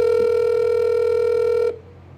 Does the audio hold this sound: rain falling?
no